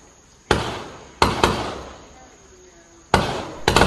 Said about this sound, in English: The deafening sounds of gunshots in some Buya neighborhoods was heard earlier this month.